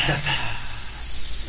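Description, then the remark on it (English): A voice stretches out a long, steady hissing S sound, emphasizing the final S of the word "success", fairly loud, sustained for about a second and a half after a brief voiced onset. “That line wouldn't work if you didn't emphasize the S part at the end of success.”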